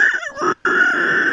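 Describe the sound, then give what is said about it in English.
A band's drummer imitates a pig squeal, a loud, raspy, high-pitched shriek broken by a brief gap, then one sustained harsh squeal held to the end, strained. “Do your best impression of a pig, dude.”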